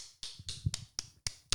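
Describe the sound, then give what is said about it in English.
Hands slap a thigh six times in a steady, even rhythm, like applause. Each slap is a sharp, fleshy smack with no talking. “I'm clapping my leg. Slapping my thigh.”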